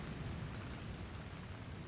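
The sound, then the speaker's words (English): Heavy rain pours down in a steady, unbroken rush of noise with a deep low rumble beneath it, fairly loud, with no voices. “He didn't call for rain. Now I'm gonna be soaked.”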